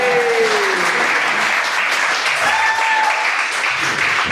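A crowd applauds loudly and steadily, a dense wash of clapping sustained for several seconds, with a brief whistle-like tone and faint voices mixed underneath.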